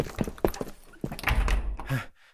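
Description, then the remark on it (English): A supermarket door is pushed shut with a heavy thunk, preceded by a few sharp knocks and rattles, then a brief clatter before the sound cuts off. “Lock the door.”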